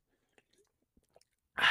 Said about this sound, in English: I took a sip of it, and buddy, let me tell you, awful. I'm drinking. I just took a sip. You want to listen?